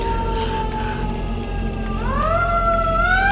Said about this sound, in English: I hear sirens. I can't take this. They must be coming. Help is coming.